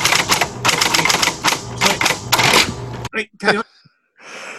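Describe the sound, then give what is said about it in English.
Rapid, steady clacking of keys on a keyboard as someone types up a list, loud, running for about three seconds before trailing off into a few scattered final taps. “I'm just typing this up for the list.”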